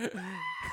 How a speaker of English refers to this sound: yep. Goat.